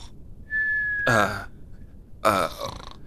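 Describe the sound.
A voice imitates cartoon honk-shoo snoring: a thin whistled "shoo" tone leads into a loud, raspy honk, then a pause and a second honk, each under half a second.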